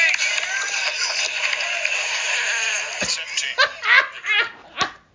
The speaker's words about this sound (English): Dude, that is a hot fart. Dude, that's a hot fart on a hot mic.